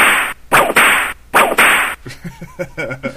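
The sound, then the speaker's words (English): A whip crack sound effect: four sharp whip cracks snap out in quick succession, each with a brief hissing tail, loud; a voice follows briefly afterward. “The closest to a spank sound effect, I think.”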